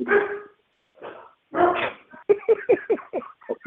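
Dogs let out after someone jumped the fence bark, starting with a few drawn-out barks and then breaking into a quick, excited run of short, sharp yaps, with no talking.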